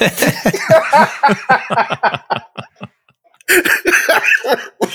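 A loud fit of repeated harsh coughs, rapid bursts tumbling one after another, a brief pause, then another dense cluster of coughing and gasping breaths.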